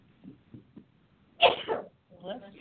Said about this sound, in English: And now I'm sneezing.